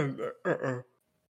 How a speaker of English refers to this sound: Nah, bro, I'm telling you, I was tired, bro. Like, I'm over here yawning and shit.